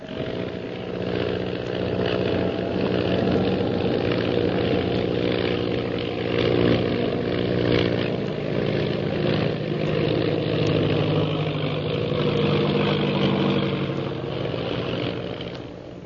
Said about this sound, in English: Meanwhile, Shanghai Lil continues her attempt to escape her pursuer by stunting her plane.